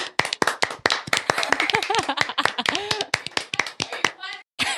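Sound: hands clapping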